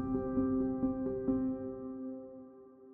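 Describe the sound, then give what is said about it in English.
A helicopter carrying Australian SAS troops into the village of Darwan at dawn drones steadily with a rhythmic thudding of rotor blades, loud at first and then gradually fading in the second half, with no voices present. “On September 11, 2012, the Australian SAS arrive in a village called Darwan, flying in by helicopter at dawn.”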